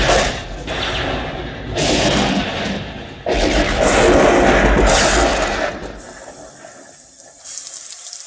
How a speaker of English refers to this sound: Suddenly you hear thunder roars, lightning is striking, the rain pours down, it's hitting the hot ground, and steam is rising up.